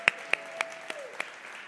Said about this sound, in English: Dr. Billy Snow is here. Would you stand? We can clap for you.